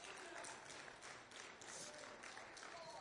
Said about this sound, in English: Come on, let's do that one more time and put our hands together once again.